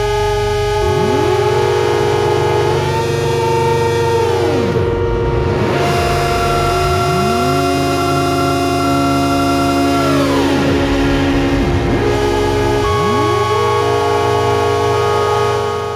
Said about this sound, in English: The fact that the last line is, and then immediately after, the synths explode with noisy, shrill noises, and the drone goes on a little longer.